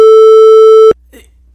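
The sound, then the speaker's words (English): A loud censor beep blanking out a spoken name: one steady, mid-pitched tone holding for just under a second before cutting off sharply, followed by a faint voice murmuring. “Just make it a beep.”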